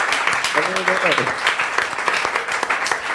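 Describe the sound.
An audience in Kentucky claps steadily for about three seconds for a guest joining over Skype from Glasgow, Scotland, a dense, even wash of many hands. Early on a single voice briefly calls out above the applause.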